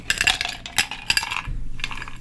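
Ice cubes clatter into a glass for a grown-up chocolate Coke drink in a quick series of bright clinks and knocks, several sharp hits close together, then a brief rattle as the cubes settle. No one speaks.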